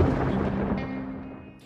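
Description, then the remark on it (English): A deep, rolling rumble of thunder before a storm, loud at first, then slowly fading away over a couple of seconds with no voices. “Storm's coming.”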